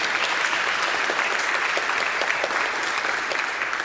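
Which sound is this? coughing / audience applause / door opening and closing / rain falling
audience applause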